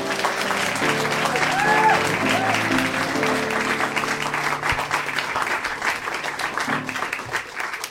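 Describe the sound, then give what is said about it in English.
Sustained applause from a large audience welcoming the final act of the evening, a dense steady wash of clapping that stays loud throughout, with faint voices and a few brief tonal calls mixed in early on. “That's how I want to hear the claps, as if it's 100 Johns clapping right now, to introduce your final act of the evening,”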